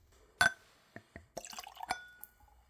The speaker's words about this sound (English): I am using a clean Glencairn glass, which is a whiskey nosing glass designed to see the spirit, smell the spirit, and of course, taste the spirit. So let's go for a pour.